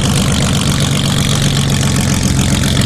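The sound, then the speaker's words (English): The airplane engine of a flat-bottomed sea sled boat on the Seattle waters roars steadily, a loud, deafening, continuous throbbing drone with a rough low rumble and hissing wash, no voices. “The sea sled can hit a speed of over 40 knots because they're equipped with, you guessed it, airplane engines.”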